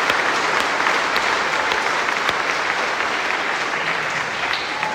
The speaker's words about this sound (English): Well, first, just welcome to our graduates. Clap for them. They made it. Well done.